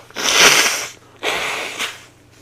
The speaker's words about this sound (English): You know, sometimes you just got to blow your nose in the middle of a podcast. Sometimes you're just cranking along and the boogers are just sitting right there and you're like, yeah.